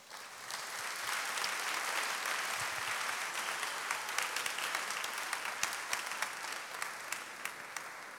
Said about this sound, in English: Oh, another round of applause, please, please, please. Yes, he has done a good job, yeah.